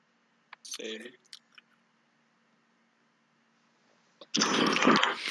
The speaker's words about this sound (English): What you munching on? Rice Krispies.